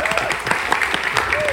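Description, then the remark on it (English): An audience at the Shalom Hartman Institute in Jerusalem applauding: dense, steady clapping at a strong, even level, with a few voices or whoops rising briefly through the noise. “If you envy the applause in this crowd, please join us next summer at the Shalom Hartman Institute in Jerusalem.”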